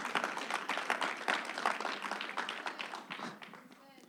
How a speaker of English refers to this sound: And if you're going to be mighty, you need to clap this thing up. I think this side agrees.